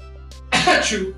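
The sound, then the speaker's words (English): A single small, feeble sneeze: a quick breathy intake, then a brief, airy burst with a slightly voiced edge, heard on its own over a low steady hum. “That was the most pathetic sneeze I ever heard.”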